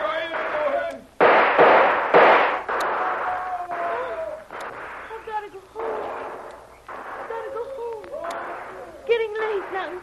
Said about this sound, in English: Now they're shooting wild. Trying to cover their advance.